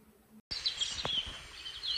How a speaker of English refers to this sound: Listen to the birds. They're tweeting.